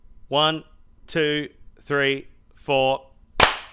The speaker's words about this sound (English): And then you get two clap peaks that you can line up on the different tracks. Okay, sure. All right. So mouth count to 5. Just mouth it and then we'll clap. Are we going to 5? 4, whatever. Okay, 1, 2, 3, 4, clap.